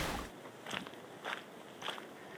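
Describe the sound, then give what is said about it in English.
Three evenly spaced footsteps crunch on a gritty dirt road outside a neighborhood of former 1980s military housing in Kansas in early spring, during a daily walk. Each step is a short scraping crunch over a soft, steady background hiss. No one speaks. “Walking on a dirt road outside a neighborhood.”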